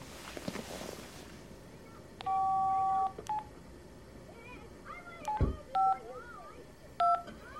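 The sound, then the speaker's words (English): Telephone keypad tones beep as a number is dialed on speakerphone: one long held tone, then several short, spaced beeps, clear over a soft rustling background. “And speakerphone.”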